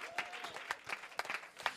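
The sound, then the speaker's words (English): An audience claps for Jesus, with many overlapping hand claps forming a busy, uneven patter, without any talk over it. “Let me hear you clap to Jesus.”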